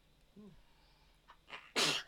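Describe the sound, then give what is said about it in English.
A single loud sneeze bursts out at the end, preceded by a short sharp intake of breath and a faint vocal murmur. “Bless you.”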